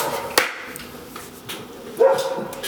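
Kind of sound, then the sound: animal, dog barking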